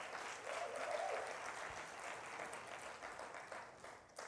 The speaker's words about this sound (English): Y'all clap your hands and give us some love.